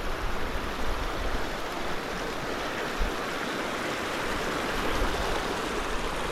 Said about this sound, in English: Oh, hello river.